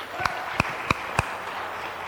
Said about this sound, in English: Church, can we give a hand of applause?